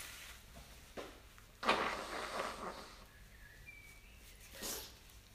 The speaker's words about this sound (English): Excuse me, I blow my nose.